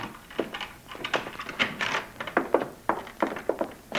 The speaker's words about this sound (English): Get that door open.